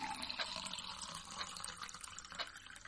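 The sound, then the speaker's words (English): Liquid pours steadily into a cup as a man slowly pours himself another cup to drink, a continuous splashing trickle with a few brighter spikes as the stream shifts, lasting the whole few seconds with no voices. “He'll finish his cup and then slowly pour out another one.”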